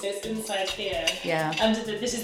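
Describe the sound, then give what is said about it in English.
A casserole dish and foil being handled as a wet kitchen cloth is set in the dish and mashed matoke wrapped in foil is put inside, a busy run of light clinks, knocks and crinkles that carries on steadily for about two seconds. “So you just do it like this and sit that kitchen cloth in the casserole dish.”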